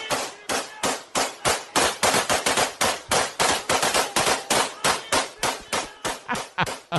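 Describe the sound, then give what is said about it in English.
Rapid, loud bursts of automatic AK-47 rifle fire from Habib's fans in Russia celebrating his championship, random shots into the night, cracking in quick irregular volleys one after another for several seconds, with no voices heard. “This was an Instagram post from Russia of some of Habib's fans celebrating with their AK-47s.”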